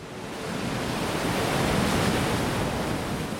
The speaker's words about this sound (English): The surf was really strong. It was large swells, a lot of turbulence in the water. It was a gray, misty day.